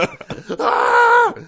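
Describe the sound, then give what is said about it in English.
A voice imitating a scream lets out a loud, sustained scream lasting under a second, steady in pitch before it breaks off, preceded by a few short breathy vocal bursts. “I just start screaming.”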